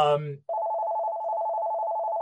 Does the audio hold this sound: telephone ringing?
yes